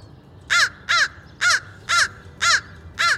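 A crow caws six times in a steady, evenly spaced series, each call harsh, raspy and loud, over a faint background hum with no voices.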